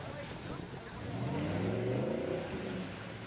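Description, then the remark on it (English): A car stuck in mud revs its engine hard for a couple of seconds as the driver tries to drive out, its droning pitch climbing and then easing off, fairly loud, with faint background murmuring underneath. “There's no way that this guy's getting out without a tractor pulling him out of the mud.”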